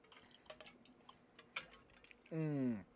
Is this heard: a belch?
no